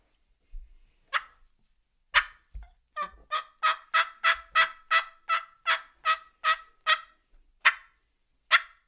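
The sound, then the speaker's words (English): A turkey call sounds a few scattered clucks, then a long, steady run of about a dozen raspy yelps, loud, with no one talking; a normal, longer yelp rather than an assembly yelp, with clucks added for realism. “And then we may hit them with just our normal, somewhat long, I wouldn't call it an assembly yelp, but a longer yelp.”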